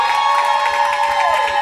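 A group claps and cheers to vote for a contestant, a loud, steady burst of applause with high shouts and whoops layered over dense, continuous hand clapping.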